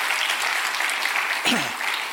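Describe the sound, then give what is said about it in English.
An audience at a church service claps steadily for the Lord in a dense wash of applause, with a voice shouting out briefly partway through before the clapping carries on. “Come on, give the Lord a hand clap, a shout, and an amen.”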